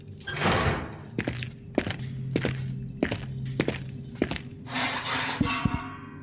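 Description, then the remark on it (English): A door swings open with a rushing scrape, then steady footsteps thud across a hard floor at an even pace, with a second scraping swell near the end. “Oh, wait, someone's opening the door.”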